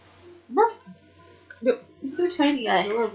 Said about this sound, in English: I like how he just randomly figures that. He finds one thing really random to bark at. I don't know. It's your reflection or it's the curtain. I don't know.